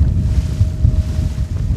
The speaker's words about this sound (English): starts the motor on a small blue and white boat, or panga, and begins the short trip from the little town of Punta Chueca to the vast Isla del Tiburón, the largest island on the Gulf of California